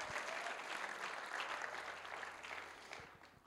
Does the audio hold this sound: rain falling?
no